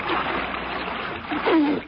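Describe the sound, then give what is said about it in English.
Water splashes and sloshes continuously as a person scoops water from a salty stream to drink, with a brief gulping or gurgling sound near the end. “Better not drink out of that water. It's probably poison. Oh, why? Here, hold the light. I'm going to have a drink.”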